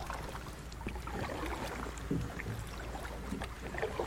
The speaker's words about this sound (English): And I have a paddle. Whatever. I don't know if this is a paddle or an oar. And I'm in a Right now I'm in a swamp, an estuary. There's bubbling muck. I'll do a little more paddling, patrons. Really, if that isn't the most relaxing sound.